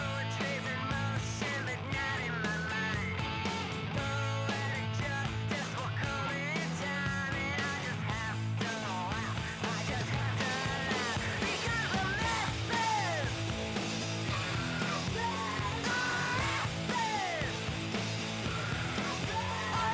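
A loud, dense grunge-punk song plays continuously, with heavy distorted guitars and driving drums under raw, shouted vocals that stay up front the whole time.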